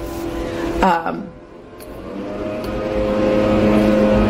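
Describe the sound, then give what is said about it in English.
A leaf blower's motor drones steadily outside, heard through a shut window, with a brief revving whine early on before settling into a continuous buzzing roar that grows slightly louder toward the end. “help the leaf blowers, the worst and so pointless.”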